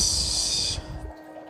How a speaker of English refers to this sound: Yeah, I may be clearing my throat, but I will not be doing a poem tonight.